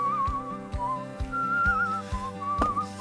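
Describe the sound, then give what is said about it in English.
Someone whistles a wavering, melodic tune, clear, over a steady backing of rhythmic, plucked-sounding accompaniment with regular beats. “Have you whistled yet? He's good at whistling.”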